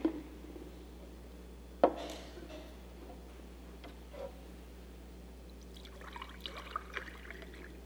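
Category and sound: household object, water being poured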